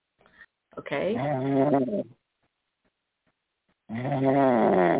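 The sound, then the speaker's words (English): Two long, rumbling snores from a caller from Ohio come through a thin, telephone-quality line, each lasting about a second and separated by a quiet pause. They're fairly loud, with no talking. “Okay, you're going to have to hang up this one because I'm going to hang this person up. She's snoring.”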